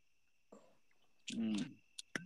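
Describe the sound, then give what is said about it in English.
A person vocally imitates a Boost Mobile push-to-talk phone chirp: a short, buzzy, rising hoot-like sound, followed by a couple of quick sharp clicks over a faint steady high-pitched hum. “Stop chirping. Like, people would literally purposely chirp.”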